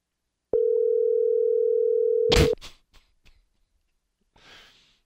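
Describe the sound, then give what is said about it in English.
A single steady electronic phone ringing tone holds for about two seconds, then cuts off abruptly with a loud click, followed by a few small clicks and a soft breathy exhale. “Normally, if she answers, she'll answer like by the third ring or so.”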